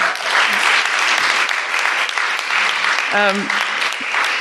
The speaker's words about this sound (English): Can we just give our teenagers a round of applause?